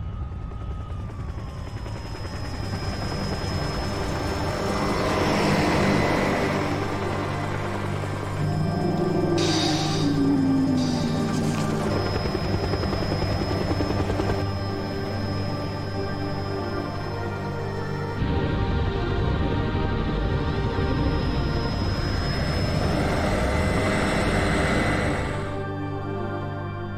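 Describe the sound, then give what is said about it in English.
Computer-generated helicopters drone steadily and loudly throughout as they fly around attacking a humanoid, their engine and rotor noise filling the scene, mixed with bursts that sound like gunfire and heavy rumbling action. No one speaks. “And again, it's more CG, and its helicopters are flying round and attacking the humanoid.”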